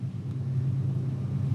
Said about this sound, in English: I'm not used to that train.